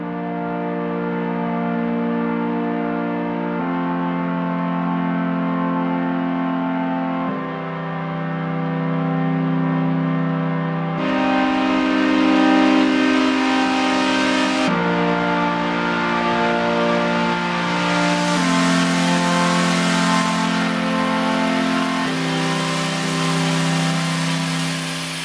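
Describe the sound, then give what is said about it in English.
A sustained synth plays slow chord changes, then its filter suddenly opens, turning the tone much brighter and buzzier, saturated to the edge of distortion. Loud and continuous, with no voices. “That's where the synth opens up and it gets kind of saturated and like almost distorting”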